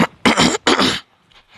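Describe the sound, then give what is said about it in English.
A person clears their throat with two loud, rasping bursts in quick succession, each roughly a third of a second long, followed by near silence. “I also wanted to talk about why I keep having to clear my throat, but that's for a later time.”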